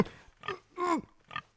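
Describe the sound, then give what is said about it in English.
A pig called Pig Thulu grunts and oinks in four quick, snorting bursts, moderately loud, the third call longer and more drawn out than the others. “Come, Pig Thulu. Feast on this wretch.”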